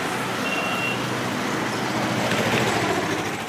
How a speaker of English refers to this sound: In Dhaka, the traffic is satanic in its congestion, but new expressways are being put up, and Japan is helping build and finance an elevated metro system.